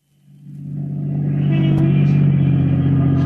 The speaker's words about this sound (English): We're lucky. There's a parking space. All right, pull in. Now turn off the motor.